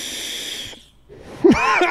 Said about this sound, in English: And then he coughs.